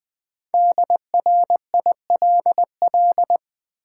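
A steady mid-pitched Morse code tone beeps out a five-letter word at 20 words per minute in crisp dots and dashes, with short gaps between letters. No voices, only the clean electronic tone.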